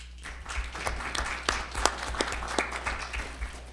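An audience applauds steadily to welcome a speaker at an event, many overlapping claps forming a dense wash with sharper individual claps popping out, moderately loud throughout with no one speaking.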